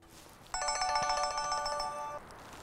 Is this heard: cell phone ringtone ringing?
yes